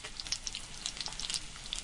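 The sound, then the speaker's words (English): Food frying in hot oil, a steady hiss of sizzling with scattered sharp crackles and pops throughout, fairly quiet and with no voices. “start cooking some more. Yeah, take them off and put them on like a paper towel to drain a little bit.”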